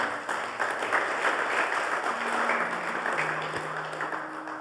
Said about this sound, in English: Let's give that hand a round of applause.